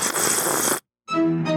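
A loud, wet slurping noise lasting under a second, then a short pause and a brief squeaky, tonal sound.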